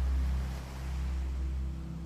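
Steady ocean waves wash against the shore in a low, continuous rumble, swelling and easing gently with no voices present.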